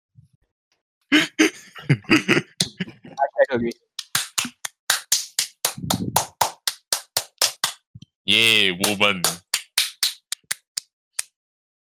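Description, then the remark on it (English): Hands clap in a steady, quick rhythm for several seconds as a round of applause for women, fairly loud, following brief speech. A short burst of voice or laughter cuts in partway through before the clapping continues. “Still, that's a round of applause for women.”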